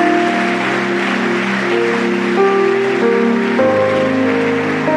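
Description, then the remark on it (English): An audience claps for Jesus in a dense, steady wash of applause that never lets up, while sustained keyboard or organ chords ring out and shift pitch underneath. “Clap for Jesus. Palmas para Jesus.”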